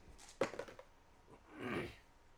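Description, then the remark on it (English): Red and white dice clatter briefly on a surface, the red showing 4 and the white 10: a sharp first knock followed by several quick, fading clicks, fairly quiet, then a soft rustling swell. “Red dice say 4, white dice say 10.”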